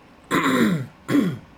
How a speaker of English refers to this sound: I'll clear my throat for the 10th time this podcast. Well, it's important to clear your throat because everyone is, you know, reminded that you're here and that you have something to say, right?